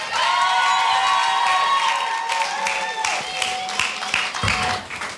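An audience breaks into a round of applause, steady clapping mixed with cheering and sustained whoops from the crowd, continuing loudly for several seconds.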